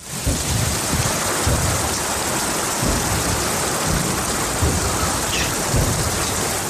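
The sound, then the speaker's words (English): Short, sporadic low booms from a lake thud through a steady, heavy rainstorm downpour, several brief muffled blasts scattered irregularly under the constant hiss of rain, sounding like cannon fire. “And they're very different because in the rain, it's very short and fast, sporadic ones.”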